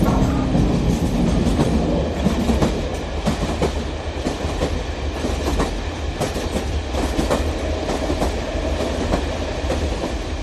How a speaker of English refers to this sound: Now then, girls and boys, let's see if you've done your homework. Who can tell me what makes this train go?